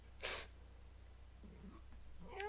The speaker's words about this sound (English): Even the cat's sick of this. Aww.